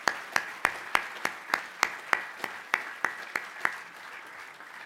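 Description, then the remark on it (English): Applause with a clear, steady clapping rhythm: about a dozen sharp, bright claps at an even pace, tapering off near the end. No one speaks. An audience at a program at the VHS applauds the Wilkinson family and the program's supporters. “So let's give a round of applause to the Wilkinsons and everyone who makes this possible.”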